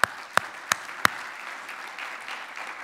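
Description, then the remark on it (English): A church audience breaks into applause, clapping to the Lord: four sharp, evenly spaced claps stand out at the start, then settle into a steady wash of many hands clapping together, with no talking. “I think we need to clap to the Lord for that.”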